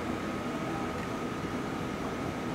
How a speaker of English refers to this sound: And here it is. Sort of the printer's printing made it sound like the Pac-Man sound.